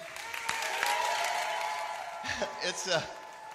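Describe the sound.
Audience applause at a comedy show as the next comedian is introduced fills the first two seconds with a dense, steady wash of clapping and some cheering, then fades as a voice begins talking over the tail end.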